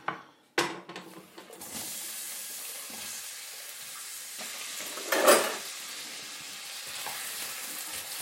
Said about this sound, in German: Ich habe jetzt Öl in die Pfanne gemacht und brate da jetzt erstmal die Zwiebeln an.